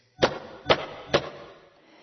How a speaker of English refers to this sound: I found the door. This is it. Oh, is it locked? I think I'll knock first, just in case.